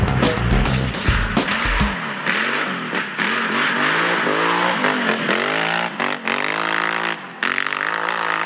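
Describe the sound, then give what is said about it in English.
A motorcycle engine revs loudly, opening with a few harsh, sputtering bursts before settling into repeated rising and falling whines as the throttle is worked, with no one speaking. “You know what's crazy is at first that sounds like a wild ape, just like going crazy in the jungle. Then it turns out it's a motorcycle.”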